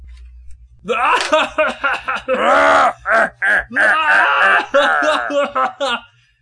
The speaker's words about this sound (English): That guy, man, is screaming.